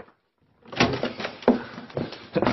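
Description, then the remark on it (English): The door to Mr. Inglethorpe's bedroom is rattled and worked at: several knocking, clattering jolts of the handle and frame over a couple of seconds before it gives way and opens. “Why don't you try going through Mr. Inglethorpe's room, sir?”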